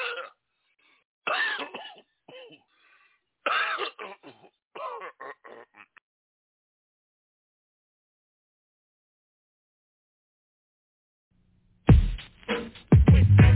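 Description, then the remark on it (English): A series of harsh coughs and throat clearing in irregular bursts, then a long quiet gap before one last louder, rougher fit of coughing. “I'm about to choke.”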